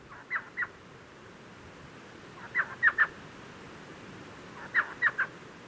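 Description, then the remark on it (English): An elf owl (Micrathene whitneyi), the world's smallest owl at about 14 centimeters from beak to tail, gives short, yelping chuckles in three separate bursts of two or three high notes each, clear over a steady hiss of background noise. “The smallest owl in the world is the perfectly named elf owl, Microthene whitneyi.”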